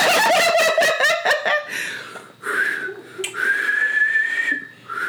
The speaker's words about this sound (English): Wait, here's the click. And the whistle. Bitch, I can't whistle.